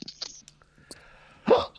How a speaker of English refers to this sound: I said the hiccup's so bad right now. Oh, you got the hiccups.